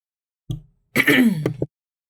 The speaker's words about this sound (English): I thought I shut off my mic when I cleared my throat. No, but that's all right. I'll leave that part in.